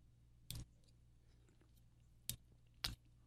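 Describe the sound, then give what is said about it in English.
Three short, wet mouth sounds of someone sipping a Monster energy drink, with quiet gaps between them and no talking. “As I take a sip of my Monster and a toke of my vape.”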